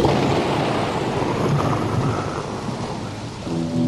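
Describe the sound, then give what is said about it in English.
Steady, heavy rain hisses throughout while deep thunder rumbles low underneath, with no voices, as the opening of a song. Near the end, a few sustained low tones rise out of the storm. “He said, we got to put in some rain and thunder.”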